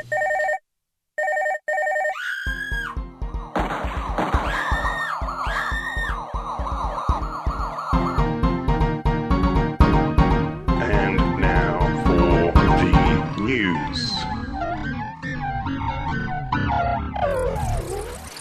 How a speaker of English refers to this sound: Is that you screaming in that news theme there